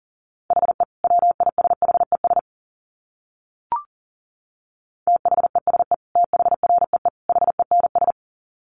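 Rapid bursts of a steady mid-pitched tone keyed on and off in quick Morse code dots and dashes at 40 words per minute, with a pause and a brief click in the middle before the fast keying resumes.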